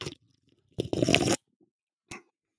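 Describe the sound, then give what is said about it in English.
A ginger snap cookie is bitten with a loud, dry crunch lasting about half a second, followed after a pause by a single shorter crunch. No one speaks. “Seltzer, again, winter pack, the Ginger Snap, which I don't think I've ever had before.”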